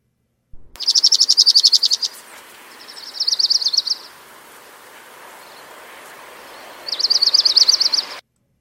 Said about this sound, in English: So that was the Orange Crown Warbler, and here again is the Dark-Eyed Junko.